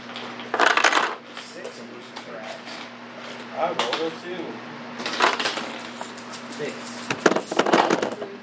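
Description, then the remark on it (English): Dice clatter and tumble across a hard tabletop in several separate bursts, with a steady low hum and quiet voices in the background, as players roll for surprise in a game. “Most people, unless you have alertness or are a ranger, you're surprised on a 1 or a 2 on the dice.”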